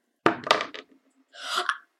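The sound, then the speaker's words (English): Dice clatter and roll against a hard surface into a dice case: a quick run of sharp clicks, a brief pause, then a second, longer rattling tumble before settling, one die rolling onto the top of the case and sticking on its magnet. No one speaks. “This one literally rolled up onto the top of my dice case and got stuck on the magnet and is a natural one.”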